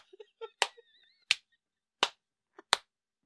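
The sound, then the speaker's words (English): Sharp knocks on a table: four loud taps at a steady, unhurried pace, preceded by a few softer, quicker taps and a faint high squeak. No voices. “Can you stop tapping the fucking table?”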